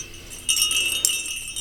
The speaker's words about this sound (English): So what would you use jingle bells for in the classroom? Silver bells. I could see.